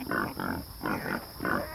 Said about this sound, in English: Shh. You pigs, keep quiet. You shout and shout.